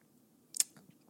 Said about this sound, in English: Speaking of whiskey, let me take a sip of my Woodford.